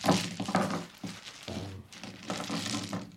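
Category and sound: household object, dice being rolled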